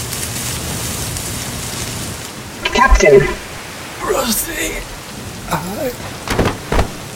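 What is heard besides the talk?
heavy rain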